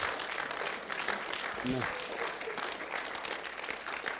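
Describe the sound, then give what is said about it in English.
An audience claps steadily, a dense, even patter of many hands filling the whole clip, with a brief tonal voice fragment rising faintly underneath partway through. “Now I'm going to ask you to do one more thing while they're clapping.”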